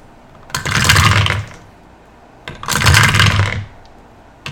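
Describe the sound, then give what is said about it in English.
Two loud bursts of clattering, each about a second long, as 147 six-sided dice (d6) tumble and rattle across a table. A short pause separates the bursts, and no one speaks. “So, Megan's going to roll 147 d6.”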